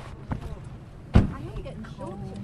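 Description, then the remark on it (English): A car door opens and shuts with a single solid thud, preceded by a softer rustle as someone climbs out of the car at a shale gas well site among fields near Blackpool, England. Faint voices murmur afterward. “climbs out of the car and looks out over the well site.”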